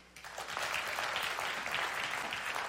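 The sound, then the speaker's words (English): A Sunday morning audience claps steadily, those not feeling cold that morning, many hands blending into a dense, sustained patter of applause that rises quickly at the start and holds at an even, fairly loud level throughout, with no voices. “And I want to ask you, how many of you are not cold this morning, if you will clap?”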